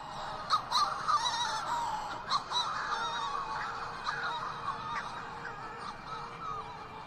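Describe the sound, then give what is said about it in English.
A dense chorus of Manx shearwater calls at an island colony, harsh, crooning cries overlapping one another without pause, with sharper individual calls standing out now and then above the steady colony din. “wrote about the Shearwater call as a repetition of the expression, "It was your fault, it was your fault," while Irish speakers tended to hear "Don't do it," or "Nor deine, nor deine," or to give it that Manx Shearwater bloss, "Nor deine, nor deine."”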